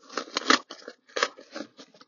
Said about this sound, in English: I'm ripping it open here in the car. The car is stopped, by the way. So let's see what Lightning Source has given us today. Oops. This is not opening as well as it should. That's sad. It's a hardcover book, actually.